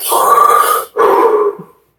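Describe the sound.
A voice imitates Darth Vader's heavy, rhythmic hissing breathing: two loud, raspy breaths, a long inhale then an exhale, with a short gap between, and no talking.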